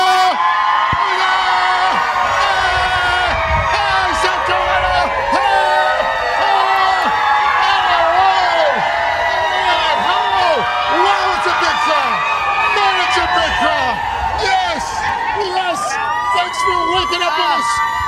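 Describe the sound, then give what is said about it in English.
A big outdoor crowd that has been out in the rain all morning roars steadily, with scattered whoops and high shouts rising over a dense wash of cheering voices that stays loud throughout. “We've got such a huge crowd.”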